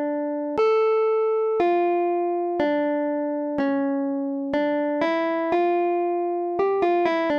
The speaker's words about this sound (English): That's me again playing on this little Bluetooth MIDI keyboard in my hotel room here. But that's how all of the fugues start, or they start with the inversion this.